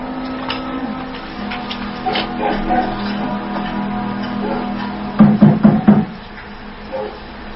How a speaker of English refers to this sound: You didn't ask there. Knock on that door.